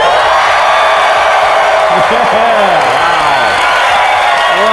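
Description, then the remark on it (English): A large live audience at the 2017 EntreLeadership Summit, on day three, cheers and applauds continuously in a loud, dense roar, with scattered whoops and yells rising and falling above the steady clapping. “Well, as you can tell, we are live, and this crowd is absolutely amazing.”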